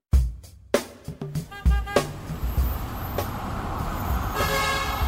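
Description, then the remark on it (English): Busy commuter street traffic in Metro Manila with a steady rumble of engines, punctuated by several short, sharp horn honks in quick succession early on, followed by quieter toots over the continuing din. “Imagine yourself commuting to work through the streets of Metro Manila.”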